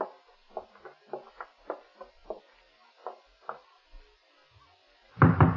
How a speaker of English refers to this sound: Oh, the way you knock gives me the shakes, Nick. So stern and official.